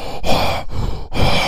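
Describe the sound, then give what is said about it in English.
Heavy, loud breathing into a microphone, three long rushing breaths with brief gaps between them, a little distorted, with no talking. “It's not just the talking too; it's the breathing.”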